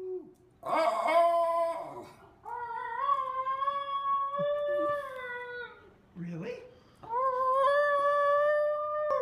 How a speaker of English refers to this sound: Well, it's like a howl. It's a very high-pitched howl. That has some power to it. It kind of sounds like a siren a little bit. Yeah. But yeah, that's the Basenji's yodel, which, sorry if we terrified you there.